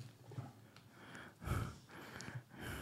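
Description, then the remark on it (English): Heavy, labored breathing of a man, a rapid series of loud, noisy inhales and exhales with no talking. “Damn, boy, you're breathing hard as heck, boy.”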